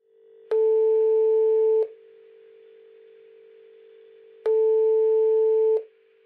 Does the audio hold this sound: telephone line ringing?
yes